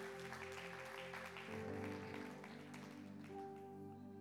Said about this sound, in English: To all of our guests that are in the house, welcome home. And we love you already. Can we give our guests a huge round of applause? Thank you so much for being here tonight.